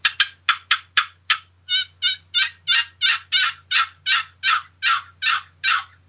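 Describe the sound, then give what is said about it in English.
A turkey call imitates a gobbler: a few sharp, quick clicks, then a long steady series of about fourteen coarse, raspy yelps at an even rhythm, fairly loud, with no talking. “That's a gobbler yelp. That's what I use.”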